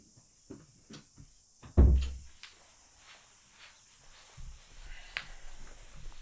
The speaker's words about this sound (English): And before I jump in, I'm actually going to close my door because there's people in this house and there's a lot of people walking around, so just give us the opportunity to keep everything quiet.